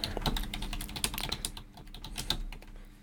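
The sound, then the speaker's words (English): Rapid, uneven clicking of keys on a computer keyboard as someone searches online, fairly quiet, a steady patter of taps lasting a few seconds with no voices. “He said, typing in the way”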